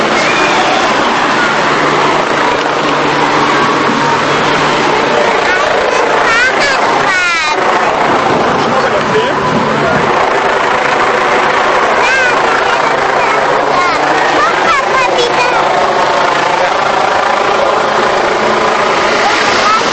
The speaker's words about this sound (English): Here come all the cars with the spares on.